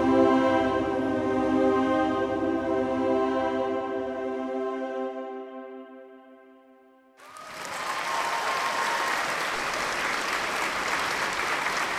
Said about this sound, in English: The applause thundering through the Venice Film Festival didn't let up for 10 minutes straight. That's 1 minute for every year that Mel Gibson had been banished from Hollywood.